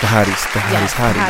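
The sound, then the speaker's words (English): A burst of applause: steady, dense clapping that fills the whole clip at a fairly loud level, mixed with voices cheering and calling out over it. “Round of applause to the fans.”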